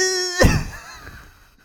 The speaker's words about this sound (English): Ooh, you got a little, there was a little liquid that came out on that one. You got a little too into character. Sorry, I coughed a little bit.